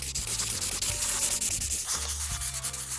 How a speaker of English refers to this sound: So, let's make a super spy map of the area, and then we can figure out where to go. I've got markers. Let's draw on the maintenance shack.